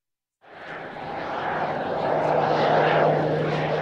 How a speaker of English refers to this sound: A new commuter air service has landed in Wrangell, offering a daily loop connecting the community to Sitka and Petersburg. KSTK's Sage Smiley watched the first plane touch down and has this report.